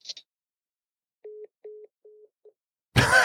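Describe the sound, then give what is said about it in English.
A telephone line tone sounds as four short, steady mid-pitched beeps, evenly spaced and fairly clear, followed abruptly by a loud burst of crackling line noise. “Was that a different phone call altogether? Or was he calling you while you were calling him?”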